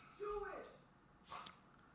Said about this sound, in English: One of two dogs. Well, you hear both. You heard both dogs barking. I guess being protective.